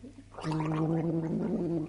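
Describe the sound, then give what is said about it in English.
A woman gargles mouthwash after drinking alcohol, a steady, bubbling gargle lasting nearly a second and a half, a low throaty warble with a fluttering rhythm that starts abruptly and cuts off cleanly, with no talking over it. “So she's basically gargled some mouthwash there, and let's have another crack at that, shall we?”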